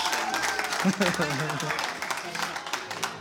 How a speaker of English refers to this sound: Round of applause